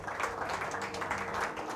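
crowd, audience clapping hands

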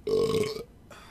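human body sound, burp

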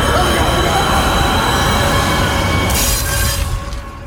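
vehicle, subway train rushing past

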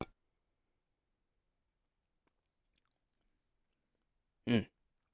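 food or drink, sipping beer

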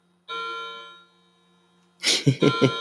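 signal or alarm, bells ringing

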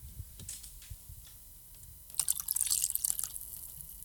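food or drink, pouring a drink

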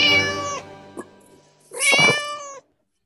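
animal, cat meowing

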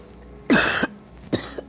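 human body sound, cough

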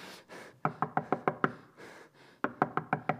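impact, knocking on a door

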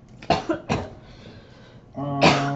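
human body sound, person coughing

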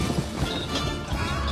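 animal, horses galloping

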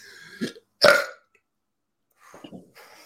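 human body sound, deliberate burp on command

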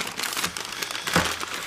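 household object, paper bag crinkling

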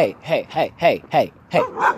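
animal, dogs barking

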